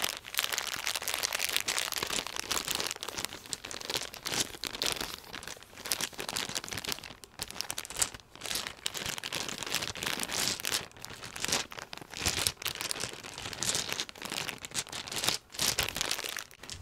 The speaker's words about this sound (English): Next, dice in a bag.